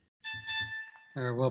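A single bright, bell-like ding rings out clearly and sustains for nearly a second over a low rumble, then a voice briefly speaks as the tone fades.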